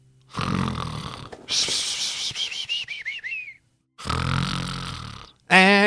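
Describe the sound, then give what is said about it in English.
A person imitates loud snoring: two rasping inhales, each followed by a squeaky whistling exhale, ending on a short high-pitched whistle. “every time I start snoring like that, she'll sit up next to me in the chair here.”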